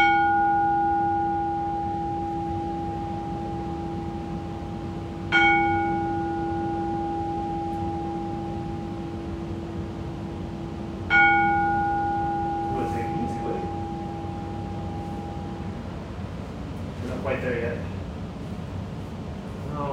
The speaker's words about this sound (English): Pick whichever bell you want. You can even take this big guy if you want.